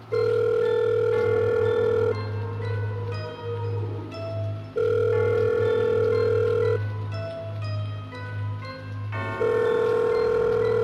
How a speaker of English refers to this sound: The phone rang several times.